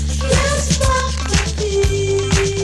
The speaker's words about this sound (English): Yeah, that is a very like dry snare right there. That is. That is sandwich dry. It's like playing on a piece of white bread.